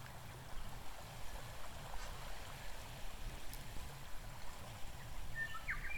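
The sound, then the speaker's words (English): Quiet, transparent water of a huge lake, so big it looks like a sea, laps softly and steadily against the grassy shore, with a low, rhythmic wash throughout and a brief bird chirp near the end, no voices. “Together, you're transported near a huge lake, so big it looks like a sea.”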